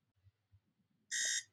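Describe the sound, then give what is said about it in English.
At the opening of a YouTube announcement video being played, a single loud electronic alarm tone bursts in abruptly after a near-silent stretch, a bright buzzing beep lasting about a third of a second. “So it opens with the alarm going off, right?”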